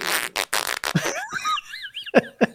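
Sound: fart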